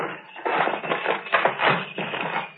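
Metal rattling and clanking as a rusted door lock is jiggled and forced, a steady run of scraping knocks and jolts, fairly loud, with no one talking.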